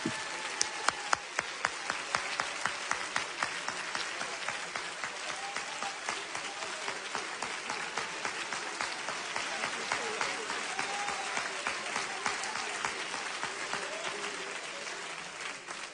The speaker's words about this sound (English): Somebody clap your hands one more time if you believe that prayer.